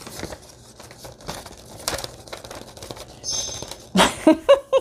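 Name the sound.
paper being handled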